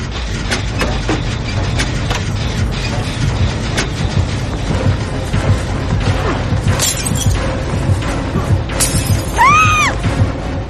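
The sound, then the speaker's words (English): Engine noise from the video game Dead by Daylight: a steady, heavy low rumble runs throughout, overlaid with scattered clattering and crunching hits and a brief whining, warbling tone near the end. No one speaks. “I think I know what this is from the engine noise.”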